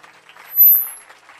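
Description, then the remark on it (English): An audience claps their hands for Jesus in a steady, dense patter at moderate volume, no voices standing out, while a thin high-pitched whine rises briefly through the middle. “Somebody shout hallelujah. And clap your hands for Jesus.”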